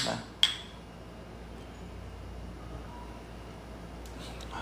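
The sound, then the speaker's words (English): A single bright clink of glasses touching in a toast, sharp, with a brief ringing tail, then only a low steady hum for the rest. “So right now we're drinking this, and it's really good. So I mean, a lot of. Yeah. Cheers.”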